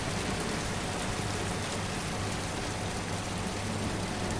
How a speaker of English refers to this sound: Once the tasting is over, we cross the white vat room where everything resonates, winding our way between the pipes and the jets of water rinsing the floors of the grape residue.